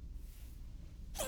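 A single sudden sneeze bursts out loud at the very end, following a second of quiet low background rumble.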